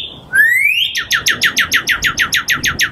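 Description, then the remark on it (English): A northern cardinal's loud, clear whistled song: a rising slurred note followed by a rapid series of about fourteen repeated down-slurred whistles, steady, with no other sounds. “The cardinal. My mother taught me when I was a boy that if you imitate a cardinal's whistle when one is nearby, it will answer back to you on and on as long as you want.”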